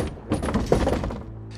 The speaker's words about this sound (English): The door opens.